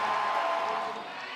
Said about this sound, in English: Just listen to that crowd. I mean, that's just Rhodes atmosphere here.